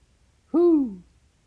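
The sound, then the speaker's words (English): A single owl hoot, a clear call that slides slightly downward in pitch and lasts about half a second, sounding alone against a quiet background. “He's flying through the woods, and is he in an owl? Yeah, he's definitely in an owl.”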